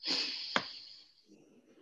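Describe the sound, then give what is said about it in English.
A long, airy deep breath taken during a breathing exercise, with a hissy rush of air, broken by a brief click, then a softer, fainter breath out trailing off at the end. “Okay, so let's take some deep breaths.”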